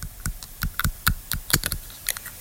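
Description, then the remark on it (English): Someone chews on a pen for an ASMR channel, producing a quick, irregular series of sharp plastic clicks and crunches, about a dozen in a couple of seconds, with no talking. “A person chewing on a pen.”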